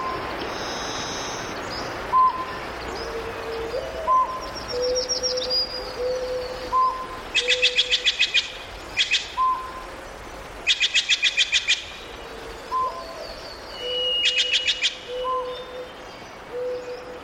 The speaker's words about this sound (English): We leave you this week in the Redwood Forest of Northern California, and with some of the birds, large and small, that make their homes among the majestic trees.